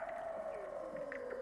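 Weddell seal singing underwater below the sea ice: a long, eerie tonal whistle glides slowly downward while faint chirps and pings pop in the background, steady, with no voices.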